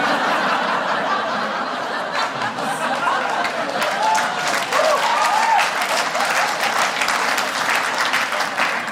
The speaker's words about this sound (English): Thank you. You guys just applauded bullies. I hope you're okay with that.